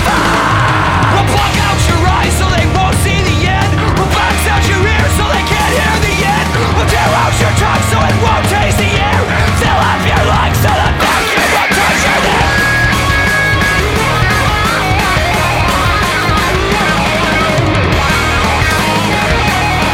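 A loud, dense punk rock song drives steadily from start to finish, with hard-hit drums, distorted guitars and a shouted, yelling lead vocal cutting through the wall of sound.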